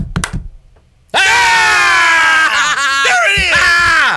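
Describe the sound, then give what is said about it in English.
After a brief, quiet opening with a few faint knocks, a baseball pitcher lets out a loud, raw, sustained scream after a strikeout as he walks off the mound, bellowing with strained, wavering pitch for about three seconds, intense. “gets the K and is screaming like a madman as he walks off the mound.”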